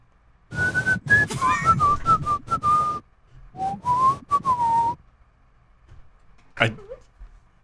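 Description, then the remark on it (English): A person whistles a bright, tuneful pop song melody into a microphone, two phrases separated by a short pause, followed by a brief sharp yelp-like sound near the end. “You definitely whistle.”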